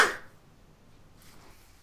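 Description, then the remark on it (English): A single quick sneeze bursts out at the start, sharp, then fades into near silence with only faint background hiss. “Bless you.”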